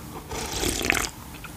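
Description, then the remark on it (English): A single wet slurp, about a second long, of someone sucking a drink that smells like root beer from a can, with airy, bubbly hiss and no talking. “Oh, you slurped it.”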